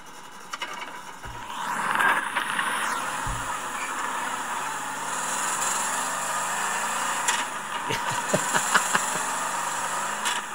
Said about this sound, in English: Yeah, it makes this crazy clicking sound, which is just the way the dog box stuff is, or the face-plated stuff is. Fifth and sixth are synchronized, so it doesn't make any sound going into fifth or sixth.